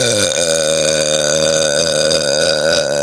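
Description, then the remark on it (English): A long, loud, sustained burp after a sip of water rumbles for about three seconds, deep and resonant with a wavering pitch and no talking over it. “Both of you can burp better than me.”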